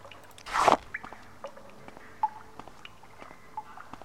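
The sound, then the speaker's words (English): Scattered water drips plink at irregular intervals in a reverberant cave lake area, following a brief splashy rush at the start; the drops are soft and sparse with no voices. “It's a drippy in cave lake area.”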